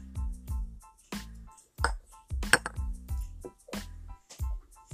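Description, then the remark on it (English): Shot glasses of apple cherry sour clink in a toast before drinking: a series of sharp, ringing clinks of glass repeat irregularly over a few seconds, fairly loud, tapped together and knocked against a surface, with no talking. “Before we do that, let's do the shot. Okay. Cheers. Cheers.”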